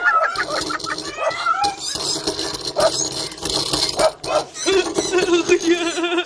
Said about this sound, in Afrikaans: Ja, hierdie is die hondjies. Hoekom is hulle al so klein, Toekie? Omdat hulle baba hondjies is, Poen.